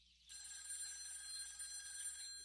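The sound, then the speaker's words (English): A single sustained telephone ring, heard from the caller's end of an outgoing call, starting after a brief pause and holding steady and fairly loud for about two seconds, with no voices. “Excuse me just one moment while I make another quick phone call.”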